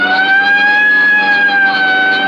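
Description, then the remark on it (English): A loud police car siren, switched on as the car responds Code 3 to a call at the end of North Baxter Road near Hillcrest, wails steadily, its tone holding nearly level with only a slight rise and fall across the whole stretch, with no voices. “Right, I'll hit the siren.”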